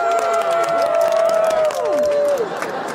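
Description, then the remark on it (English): An adoring crowd cheers and applauds a woman taking a bow, in a dense, steady roar of voices and clapping, with a long held whistle-like tone that slides down near the end. “Ellie bows to her adoring crowd.”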